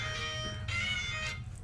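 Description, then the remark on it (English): A short, bright electronic jingle, a One Piece anime eyecatch jingle used as a phone text tone, with a few quick melodic bursts of ringing notes over a low rumbling background, moderately loud. “That's the ringtone for a phone call, too.”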